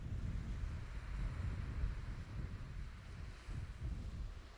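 Strong wind blows steadily across a beach, buffeting the microphone with a deep, gusty rumble for the whole stretch, with a faint wash of surf underneath and no voices.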